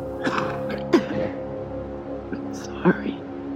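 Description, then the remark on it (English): A woman's wet, rasping cough comes in two harsh bursts, one early and one near the end, separated by ragged breathy sounds over a steady low droning tone. “She's interrupted by a horrible, wet cough.”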